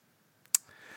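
A single quick sneeze bursts out sharply, brief and hissy, with a faint catch of breath just before it and low background noise trailing after.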